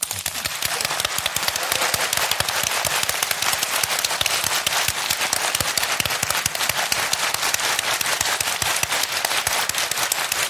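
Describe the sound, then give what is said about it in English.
Audience applause for guests: a dense, steady wash of many hands clapping at once, crackling and loud, holding an even level for about ten seconds with no voices. “So let's give a round of applause to our guests”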